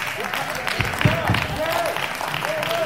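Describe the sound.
An audience claps in a steady, dense wash of applause lasting the whole moment, with voices calling out and a few sustained tones rising above the crowd noise.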